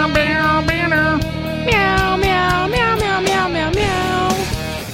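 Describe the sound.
A rapid series of loud cat meows, rising and falling in pitch, repeats in a rhythmic, song-like pattern over a steady clicking beat, with no one talking.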